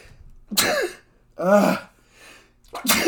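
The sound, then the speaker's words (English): Three loud, explosive sneezes burst out in quick succession, each a sharp, forceful blast with brief pauses between. “Bless you.”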